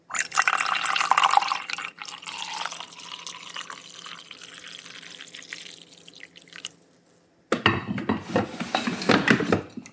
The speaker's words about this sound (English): And now it is time, ladies and gentlemen, to pour the coffee into the creamer. And as you pour it, it's going to mix with the creamer naturally. So you don't have to mix it with a spoon. Listen.